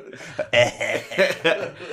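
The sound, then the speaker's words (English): A person makes a few small, throaty cough noises in quick succession, voiced and slightly chuckle-like, imitating a little cough as a sound effect in a nearly empty lecture room. “Yeah, I like how there's hardly anyone in the room, and they even insert, you just did a little cough noise to emphasize the quietness and the emptiness of the room.”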